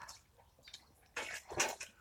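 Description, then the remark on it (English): Wet slurping and swallowing from a sip of coffee that makes the drinker choke, a few soft liquid noises building to a louder gulp near the end, with no talking. “Not a soothing sip of coffee, but a choking sip of coffee.”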